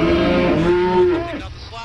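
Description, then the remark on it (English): A single loud, drawn-out cow moo with a rich, buzzing tone that holds steady and then bends downward before trailing off, heard alone. “Who were injured while trying to flee from an angry cow.”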